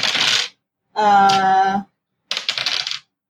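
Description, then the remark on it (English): Dice rattle and clatter across a hard tabletop in short bursts, rolled for a sword attack in a tabletop game, with a brief ringing, tonal sound between two rounds of rolling. “the sword will tell you how many dice to roll.”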